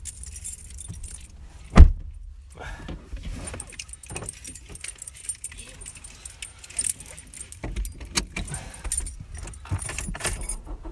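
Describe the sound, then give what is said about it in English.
Keys, found left in a door, jangle and clink in short bursts, with a sharp metallic clack early on and rustling handling noise throughout, over a low rumble like a car interior. “Where are my keys? I can't find my keys. Did I leave them? Oh, I left them in my door.”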